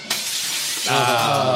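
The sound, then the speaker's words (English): A glass dropped on the floor shatters with a sharp crash, followed by a bright, scattering hiss of fragments as a voice starts up underneath near the end. “Dave, you just dropped a glass.”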